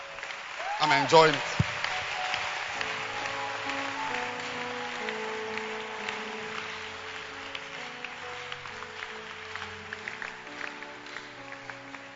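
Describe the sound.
An audience claps steadily by hand, a dense crackle of many palms that runs the whole time beneath a man's voice speaking and some sustained tones.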